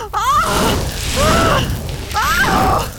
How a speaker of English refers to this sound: Oh, Mom, you just breathed fire.